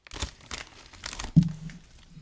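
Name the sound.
crinkling bag of chips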